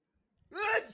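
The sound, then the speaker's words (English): A single loud sneeze bursts out after a brief quiet moment, a sharp voiced blast that trails off quickly into near silence. “I'm gonna sneeze.”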